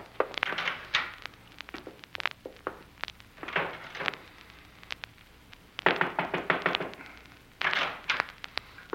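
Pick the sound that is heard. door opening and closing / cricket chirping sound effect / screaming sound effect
door opening and closing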